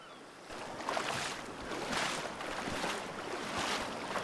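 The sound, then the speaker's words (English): Steady rushing ocean water with rhythmic surges and splashes, roughly one per second, as someone wades into the waves. Fairly loud throughout, with no voices. “Walk into the ocean.”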